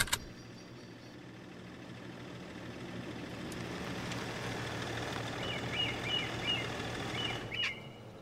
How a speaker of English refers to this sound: For now, I have to figure out where the hell I am, and if that noise my car is making signals an impending explosion.